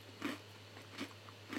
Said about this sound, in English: Can y'all hear me crunching? Yeah, of course we can,